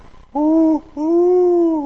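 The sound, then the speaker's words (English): A recorded powerful owl call played back to draw responses from owls: a deep, resonant two-note hoot, a shorter first note, a brief pause, then a longer drawn-out second note. It is loud and clear, with no talking. “Boo Book, powerful owl.”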